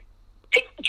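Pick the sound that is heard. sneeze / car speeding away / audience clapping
sneeze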